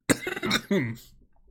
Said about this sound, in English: he coughs.